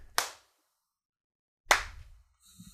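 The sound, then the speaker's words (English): Two sharp, loud hand claps about a second and a half apart, each a bright percussive burst with a quick fade, the second with a short low rumble after it. “How are yours so much louder? You clap like a bitch.”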